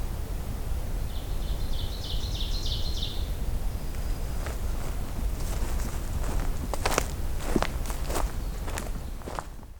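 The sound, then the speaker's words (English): A rapid series of high-pitched calls from a couple of birds chirps for about two seconds over a steady low rumble, followed later by several sharp crunching footsteps on a trail. No one speaks. “Couple of vocalizing birds here. High pitched.”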